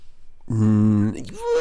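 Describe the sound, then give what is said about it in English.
After a brief quiet moment, a person's voice makes a loud, strained whinnying cry, mimicking a horse. The cry is held steady for about half a second, then wavers and trails off. “Sounds like we already do. I reckon. That's not a horse. It's a pterodactyl.”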